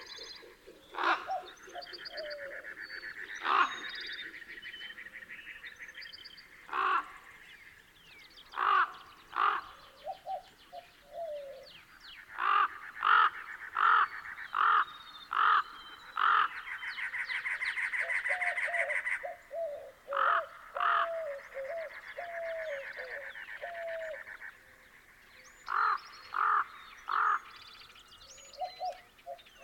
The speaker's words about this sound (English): A pair of common ravens soon arrive. Their throaty croaks enliven the soundscape.